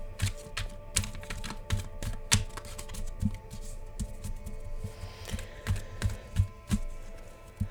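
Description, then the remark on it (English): A deck of 'I Am' cards is shuffled, a steady run of soft, irregular clicks and taps with a light papery riffle. No one speaks. “So we'll just pull one I Am card and take this for a little bit of homework, if you want to explore the energy of whatever card comes up.”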